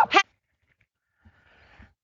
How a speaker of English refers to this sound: Sorry about that. My dog started barking right in the middle of everything.